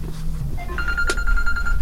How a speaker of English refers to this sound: And that moment is this, my phone going off and is that failing, the moment of delivery?